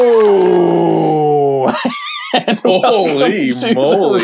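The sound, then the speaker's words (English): A man's voice growls loudly, a sustained rough, gravelly tone that then breaks into wavering, howling vocal bursts, imitating an animal's growl. “Did you hear the growl? That was good. I got some growl in that one.”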